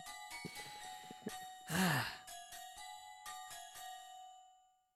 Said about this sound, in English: It's only my mum anyway. Don't worry about it. Is that your mum's ringtone, is it?